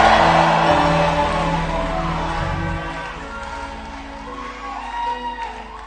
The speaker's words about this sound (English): Now, so I'm going to challenge, clap your hands for Jesus. Challenge, clap your hands for Jesus. Challenge, clap your hands for Jesus. Challenge, clap your hands for Jesus. And give the Lord a shout.